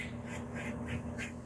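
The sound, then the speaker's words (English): Outdoors, little birds chirp and chipmunks squawk in a quick, steady series of sharp calls, about five in a second and a half, over a constant low hum with no voices. “And if you've heard little birds chirping and chipmunks squawking, it's because I am speaking to you from outside today.”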